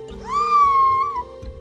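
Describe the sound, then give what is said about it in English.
A whale mimics human speech with one drawn-out, nasal, wavering call that rises, holds steady, then slides down, over a faint low rumble. “What a non-story the talking whale is.”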